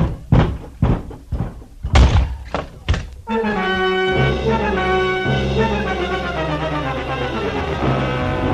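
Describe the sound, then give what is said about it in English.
A cellar door on the right is wrenched open with a series of about six heavy, uneven thuds and clunks, then loud sustained orchestral music swells in and plays to the end. “Now, open that door on your right.”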